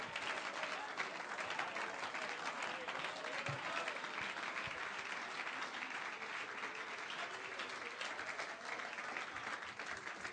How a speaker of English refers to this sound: Oh, come on, clap your hands to the Lord.